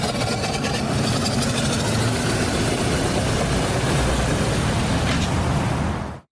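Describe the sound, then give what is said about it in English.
The engine of a 30-horsepower White steam car runs steadily, a loud, dense mechanical rumble with a hissing edge that holds constant for about six seconds before cutting off abruptly. No one speaks. “Tonight we're going to be talking about the white steam car. This is the 30 horse.”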